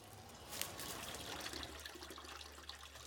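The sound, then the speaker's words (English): Water trickles and splashes steadily at a tiny sewage treatment plant meant to treat wastewater from neighbouring houses and a nursing home, a continuous wash of liquid noise over a low, constant hum, with no voices present. “He takes us to this tiny sewage treatment plant.”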